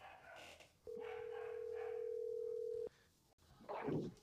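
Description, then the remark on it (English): An outgoing phone call rings once with a steady, two-second ringback tone over faint background hiss, then cuts off with a click and a brief muffled burst of noise. “There's a chance that he might not answer.”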